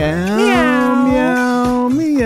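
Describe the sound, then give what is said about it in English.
A person sings a long, drawn-out meow, mimicking a cat with a steady pitch that swoops up in the middle and again at the end. “What if that's your karaoke character? You just do meow.”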